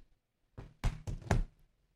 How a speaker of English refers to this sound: Yeah, drops phone.